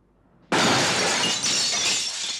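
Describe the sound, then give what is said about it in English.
A window suddenly shatters with a loud crash as a man crashes through it, followed by nearly two seconds of bright, sustained breaking and tinkling glass with no voices and no music. “And there's no music for a good few beats there when he's going through the window, crashing, laying there.”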